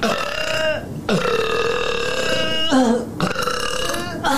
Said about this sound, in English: She's in burping girl mode today.